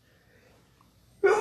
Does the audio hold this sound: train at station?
no